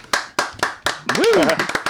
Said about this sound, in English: Hold the applause. Hold the applause. But thank you. I appreciate that.